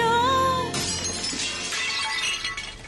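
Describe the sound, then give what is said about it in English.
A loud crash as a camera goes through a stained glass window in a scene from Men in Tights, with sharp, tinkling shards scattering for a couple of seconds after a sustained musical tone is abruptly cut off. “That was the camera going through the stained glass window that it was zooming in on.”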